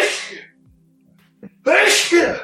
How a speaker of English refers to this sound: Give that man some medicine. Whew. Sorry, literal sneezing attack.